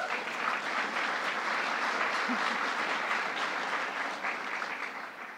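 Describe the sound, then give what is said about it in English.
Steady applause from a sizable audience at a summit on Indian country, following thanks to Chief Lynn Malerba and Administrator Guzman. The clapping is dense and sustained at a fairly loud level, tapering only slightly toward the end. “Yes, you can applaud.”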